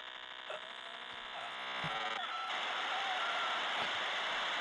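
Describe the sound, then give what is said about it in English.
Dial-up modem connecting tones: steady electronic whines and beeps that give way to a harsh, hissing static screech, loud and continuous, with no voices. “Mom, are you on the phone? Mom, get off the phone! And then here comes the satisfying part.”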